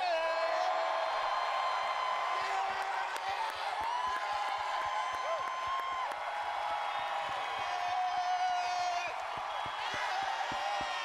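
A large crowd cheers and whoops continuously, with high shouts and scattered clapping blending into a steady, loud roar that holds for the whole stretch.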